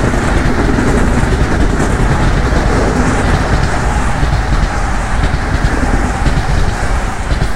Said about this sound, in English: That's train number 2.